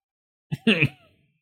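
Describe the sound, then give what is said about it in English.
A brief throat-clearing cough: a short catch followed by a rougher, voiced hack that trails off quickly, heard on its own without any talking. “Kegs, coughs, disgusting.”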